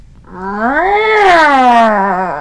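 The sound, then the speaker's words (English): A single long, drawn-out cat meow with a dissatisfied, complaining tone, rising in pitch and then sagging as it trails off. It is loud, with no talking over it. “We have the dissatisfied meow.”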